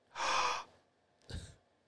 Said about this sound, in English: Gasp.